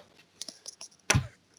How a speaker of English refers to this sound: Oh, someone knocked and ran away. I got ding dong ditched.